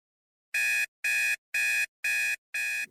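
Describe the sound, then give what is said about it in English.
A shrill, loud alarm clock blares at 7 a.m. to get someone out of bed, in five evenly spaced bursts, each about a third of a second long, harsh and buzzy with bright high tones, with no voices. “The extra shrill sound of the alarm started doing its job”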